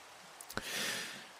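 Soft, steady rain hissing in the background, fairly quiet and continuous, with a few brief taps or clicks near the start. No one speaks.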